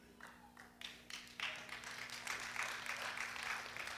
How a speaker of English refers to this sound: Y'all clapping like y'all at the Masters.